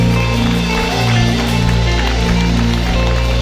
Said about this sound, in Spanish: Vamos a darle un fuerte aplauso al Señor en esta mañana de gloria.